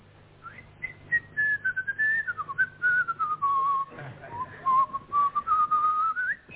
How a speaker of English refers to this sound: By whistling a highly skilled, mysterious secret tune. The moment he hears it, he will hand you a sealed envelope, heavily sealed. But the secret tune? It goes like this.